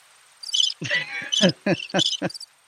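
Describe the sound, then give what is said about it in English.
Crickets chirp in a handful of short, bright bursts spaced across a couple of seconds, clear, with brief pauses of near-silence between them. “Did you hear the crickets?”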